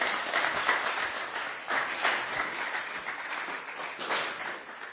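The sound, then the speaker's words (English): A crowd applauds for the sponsors of a feast steadily for about five seconds, a dense wash of overlapping claps holding a fairly even, moderate level throughout with small swells, and no one speaking over it. “So a loud round of applause for all of them, please.”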